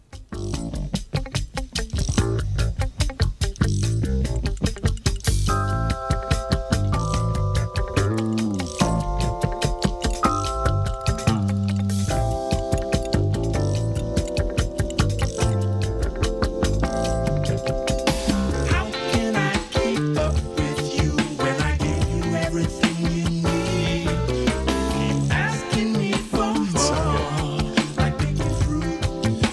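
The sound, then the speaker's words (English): A recorded rock song plays loud and steady throughout, with driving drums, dense guitars and sustained melodic notes filling the mix, and no one talking over it. “let me actually play … by ….”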